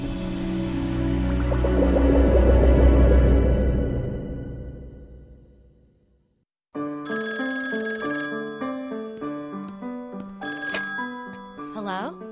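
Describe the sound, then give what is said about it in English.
A telephone bell rings with bright, metallic tones alongside a swelling sustained tone and a run of stepped, bell-like notes, with no one speaking. “Mr. Hyde is on the phone.”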